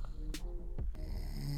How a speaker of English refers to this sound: You hear the snoring in the back?